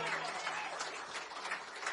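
An audience claps steadily along through a long song, a dense, continuous patter of many hands with slight swells in loudness, filling the whole stretch with no pauses.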